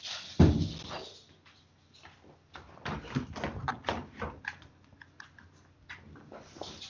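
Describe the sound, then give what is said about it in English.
A dog's paws tap and click across a hard floor in quick, irregular bursts of light, sharp ticks, after one heavier thump at the start; no one speaks. “I'm having dog problems.”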